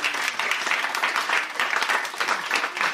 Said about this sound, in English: Well, I think our sandcastle deserves a round of applause.